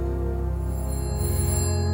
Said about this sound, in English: On the wall, it was one of those phones on the wall. Where is it? Where is it? The echo of the ring could put the phone anywhere, really.